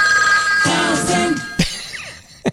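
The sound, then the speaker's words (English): A telephone rings with a bright, steady electronic trill, alone, followed by a couple of short clicks or knocks near the end; it is an incoming call on a second phone. “I got to answer the other phone. Hold on. Somebody called the other phone.”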